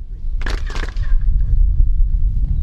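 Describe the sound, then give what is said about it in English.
Two sharp hand claps by tour guides in quick succession, each followed by a brief ringing, chirp-like echo off the stone pyramid of Kukulkan at Chichen Itza, over a steady low rumble of wind and background noise. “Sound echoes as tour guides clap to demonstrate the extraordinary acoustics of this sacred place.”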